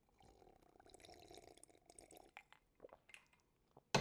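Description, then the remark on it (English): A quiet slurp of whiskey followed by a few soft swallowing clicks and gulps, then a sharp knock at the end like a glass being set down. No one speaks. “If you'll excuse me for 1 second, I'm just going to take a quick sip of whiskey.”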